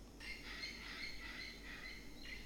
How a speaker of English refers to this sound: Is that a parrot? It's a parrot. Okay, right. I'm in Belize. Love it. You know, these are the sounds we hear here. I love it.